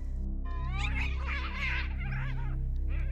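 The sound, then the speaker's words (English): A cat yowls loudly, a long drawn-out wailing cry with rising and falling pitch that continues for several seconds over a low steady hum. “That cat. It sounds huge, doesn't it?”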